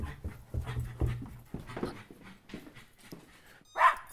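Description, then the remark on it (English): An excited dog whimpers and pants in quick, restless bursts as its lead is put on before going out for a walk, ending with a louder, sharper bark-like yelp. “As soon as the lead's on, we got to get out. Come on, Arch. Shush.”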